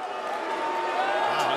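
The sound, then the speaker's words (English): A large wrestling crowd boos Don Callis and Takeshita as they come out, in a steady, sustained chorus, a dense roar of low voices holding at a constant loud level with no breaks. “The chorus of boos is their theme music.”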